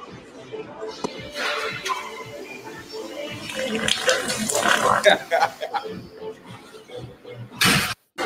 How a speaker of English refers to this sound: it's a heavy set guy trying to do pull-ups. His man was trying to help him and he farted, man.